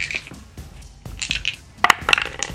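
Dice clatter and tumble across a hard tabletop in a quick series of sharp clicks and rattles, with a denser burst of impacts near the end as they settle.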